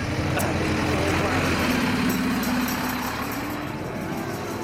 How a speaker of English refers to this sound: The bus has just headed off with some of the participants, but I'm going to walk back with the rest who are braving the lashing rain.